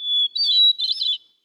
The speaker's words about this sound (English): I think it's a hermit thrush, actually. It's absolutely a hermit thrush.